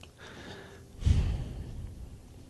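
A single throat clearing by someone with a sore throat, a short rough rasp of air, fairly loud, with quiet breathing before and after and no talking.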